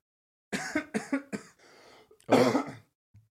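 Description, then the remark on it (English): A run of short, nervous coughs: three quick hacking bursts, a brief raspy breath, then one louder, harsher cough after a pause, with no talking. “Nervous coughing.”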